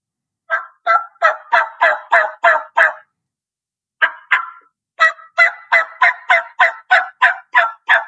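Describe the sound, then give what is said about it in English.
A hen turkey call made on a mouth call using jaw action: a run of sharp, raspy yelps barked out in a steady rhythm, a short pause with two notes, then a longer, faster series, loud, with no talking. “See, I'm barking it out more, chop, chop, chop, chop, chop, chop. And you hear the raspiness at the end of the call instead yeah.”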